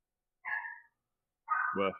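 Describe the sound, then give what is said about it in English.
Two short, sharp barks from a dog a second apart, the second deeper and louder, with silence between them and no talking. “My dogs sound way meaner than that.”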